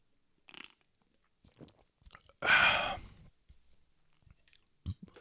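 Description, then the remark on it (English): A few small sips of beer and wet mouth sounds, followed by a loud breathy exhale, then faint swallowing noises. No one speaks. “Let me take a quick sip.”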